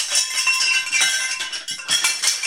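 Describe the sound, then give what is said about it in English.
A pile of metal wind chimes, knocked as someone trips over them, clatters and rings together, a continuous bright jangle of overlapping high tinkling tones with several sharper knocks, and no voices. “I have a pile of wind chimes.”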